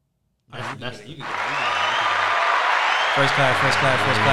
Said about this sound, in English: I know you want to press that button real bad. But if somebody would tell me, I was gonna give you applause for your first class today.